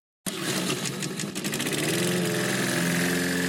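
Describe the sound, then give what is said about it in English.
A lawn mower engine sputters to life abruptly and then revs steadily, a loud, continuous motor drone with a rough throttling edge and no voices. “Mowers, start your engines.”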